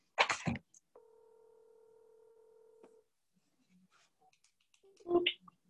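A single steady ringback tone of an outgoing phone call to a cousin sounds for about two seconds and then stops, with brief bursts of noise just before and after the ring.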